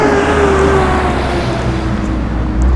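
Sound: truck passing by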